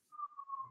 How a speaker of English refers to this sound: Well, there's some siren action.